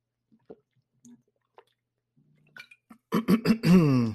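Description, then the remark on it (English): Quiet, wet slurping and swallowing sounds from a person taking a few small sips of water. They are followed by a louder burst of breathy, voiced sound at the end. “I need a drink of water.”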